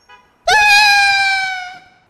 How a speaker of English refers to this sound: With their last hope swept away, our grown men of action shriek with a sound not unlike 12-year-old little girls.